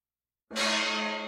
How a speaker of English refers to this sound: What just happened? We got gonged for some reason. Is it about the train? It's a nice gong, but I got to set it up in a better place where you can hit it hard and we all can hear it.